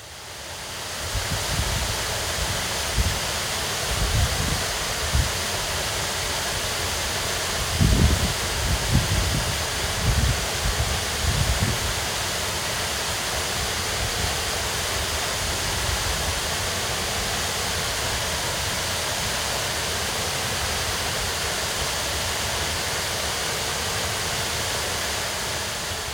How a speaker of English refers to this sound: As well as taking in the coastal path and bird watching observatory at Long Nab, he also took to Whitby and Maybeck, where he captured the sounds of falling Foss waterfall.